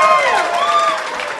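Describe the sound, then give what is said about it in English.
An audience claps and cheers in a steady, loud burst, with sweeping whistles rising and falling over the dense patter of hands for the whole moment. “Round of applause.”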